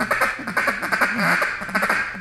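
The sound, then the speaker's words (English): A tight duck feed call blown on a double-reed call: a rapid, unbroken stream of clipped, buzzy chattering notes, fairly loud, with no talking. “So on a feed call, I can keep it real tight.”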